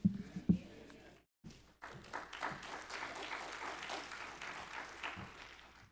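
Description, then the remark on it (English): A couple of dull thumps and a brief silence, then an audience breaks into steady applause after a sermon, a dense patter of many hands clapping that holds at an even, moderate level until the end. “Y'all don't clap after I get done preaching.”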